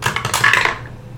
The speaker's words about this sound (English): Your dice sound like they always get stuck.